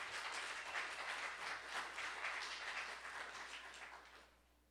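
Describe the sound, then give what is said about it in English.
An audience at Oak Church applauds steadily to invite a divinity student up to speak, a dense wash of many hands clapping at once that holds for several seconds and then begins to fade at the end. No one speaks. “and invite him up with some round of applause.”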